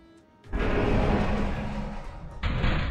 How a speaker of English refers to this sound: the doors open.